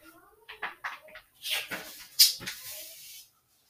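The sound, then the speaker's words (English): Paper crinkles and rustles in a few scratchy bursts as a sheet is folded in half to make a card, with a sharp crease sound near the middle and a faint voice murmuring at the start. “So, what we're gonna do, we're gonna fold the paper in half.”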